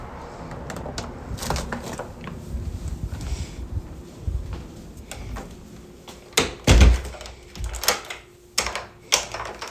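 The front door of a house is unlatched, swung open and shut with a solid thunk, surrounded by clicks, rattles and scuffing footsteps; a second firm knock-like thud follows near the end.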